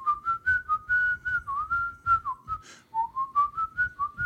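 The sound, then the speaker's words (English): A person whistles the Peer Gynt Suite melody, In the Hall of the Mountain King, a steady run of short, bright notes rising and dipping in a repeating phrase, with soft breathy noise underneath and no talking. “You know, Peter Lorre, whenever he's in the mood, he starts whistling the Peer Gynt Suite.”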